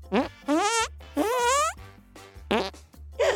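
A rapid string of about five armpit fart noises, wet buzzy squelches that each rise in pitch, with one longer drawn-out blast in the middle and short gaps between them.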